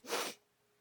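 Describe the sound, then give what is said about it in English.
A single quick sniffle, a breathy, hissing nasal burst lasting about a third of a second before falling away into near silence. No voices accompany it. “That was like a sniffle chime in kind of thing.”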